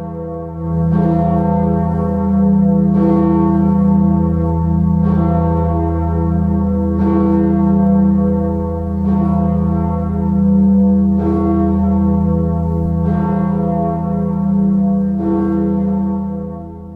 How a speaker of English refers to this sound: Kirk Borden at Dordrecht Minster in the Netherlands, cast in 1999 by the Royal Ijsbouts Bell Foundry, with a pitch of E, a mass of 9,830 kilograms, and a diameter of 2.52 meters.